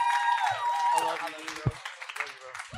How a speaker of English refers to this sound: Y'all give a round of applause